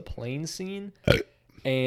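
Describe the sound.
A short, loud burp breaks in between stretches of a man talking, a single throaty belch lasting a fraction of a second before the speech resumes.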